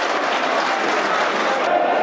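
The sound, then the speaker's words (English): Polite applause from a football stadium crowd after an attacking effort that wins a corner against Forest, a steady, dense wash of clapping that holds at an even level for about two seconds, with general crowd noise mixed in. “Polite applause for that effort.”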